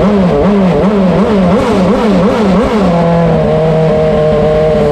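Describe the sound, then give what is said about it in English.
A loud RB7 race car's V8 engine revs repeatedly in quick blips at a live demo, its pitch rising and falling several times before settling into a steady, high idle drone. No one speaks. “Here it is with just a few revs.”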